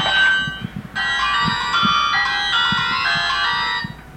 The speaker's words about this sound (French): Ah, téléphone? Oui. Allez-y, attendez, vous voulez que je vous le donne? Il est où? Allez-y.